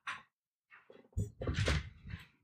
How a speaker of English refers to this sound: Will you shut that door for me? And the door to the bedroom? Thank you.